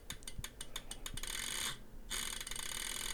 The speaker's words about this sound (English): So yeah, there's these clicking relays in here, and that actually happens for both of them. But it's kind of cool just to hear the thing.